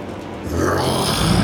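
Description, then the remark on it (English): A person growls out a monster's roar: a loud, rough, low rasping vocal sound that swells after a brief quieter start and holds steady to the end, with no words. “Roars.”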